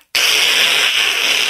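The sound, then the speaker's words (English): A voice imitates a Mr. Frosty hand-cranked ice shaver grating ice cubes as its limp plastic handle is turned: a loud, steady, hissy rasp that starts abruptly after a brief silence and holds for over a second without breaking. “And so you put the ice cubes in the top and then you turn this fucking limp plastic handle and then it just goes...”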